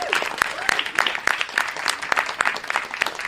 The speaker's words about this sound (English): Can we have a big round of applause for him?